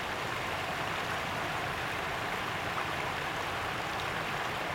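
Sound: flowing river stream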